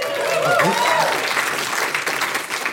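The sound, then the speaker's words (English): Steady audience applause fills the whole stretch, a dense hiss of many hands clapping, with a voice briefly calling out over it near the beginning before the clapping thins slightly. “She's been around a while, so I assume that's what the applause was.”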